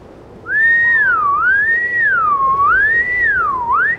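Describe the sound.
A person whistles a continuous, wavering tone that glides up and down in slow swoops, imitating a killer whale's call. The whistle is loud, with no talking.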